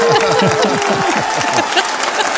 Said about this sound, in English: We've been told that I'm injecting a crowd sound right here.